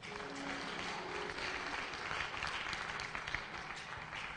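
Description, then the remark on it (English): A church audience breaks into steady applause for a member, dense overlapping claps filling the whole stretch at an even, sustained level with a faint murmur of voices beneath. “Clap for him.”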